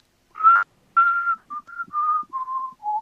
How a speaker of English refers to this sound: It's like, he's dead tone deaf with his whistling. He's still whistling the tune of the song. Still whistling the tune.